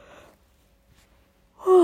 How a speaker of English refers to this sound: As I yawn.